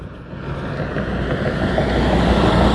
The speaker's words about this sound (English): So it looks like the factory's open, because those are the factory buses that take all the people to the factory.